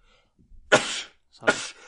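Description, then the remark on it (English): Two sharp sneezes in quick succession, each a loud, breathy burst preceded by a brief inhale, with no talking. “That was my last sneeze.”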